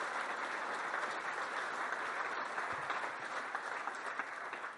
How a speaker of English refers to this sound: a round of applause, everybody, by the way.